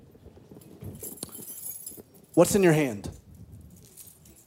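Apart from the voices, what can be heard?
audience jangling their keys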